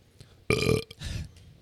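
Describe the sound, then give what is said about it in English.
A single loud, throaty burp bursts out for about a third of a second, followed by a softer, rumbling tail of air, with no speech around it. “Excuse me.”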